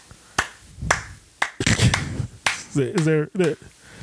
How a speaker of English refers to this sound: Is there a reason why you clapped? I'm proud of them.